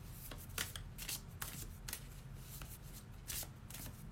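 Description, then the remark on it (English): A deck of cards being shuffled, a steady run of soft papery riffles and flicks with brief sharper snaps, no one talking. “All right, I think that's enough shuffling.”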